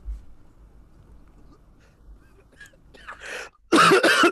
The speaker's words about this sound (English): Sorry, I was coughing because that sounds delicious.